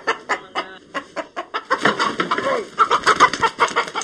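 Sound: chicken clucking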